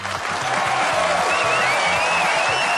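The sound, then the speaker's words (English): A burst of steady applause from a group after a correct answer in an NFL trivia quiz, dense and continuous for a few seconds, with a few faint tonal sounds mixed into the clapping. “Let's get applause.”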